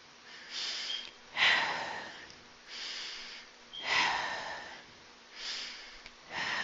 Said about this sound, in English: Those are deep breaths, right? And this is part of meditation as well. So focus on breathing out as slowly as possible until the lungs are completely empty.